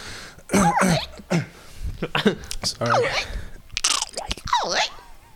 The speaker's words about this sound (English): That's Velcro? Yep. Yeah. They did that. It's Foley a lot.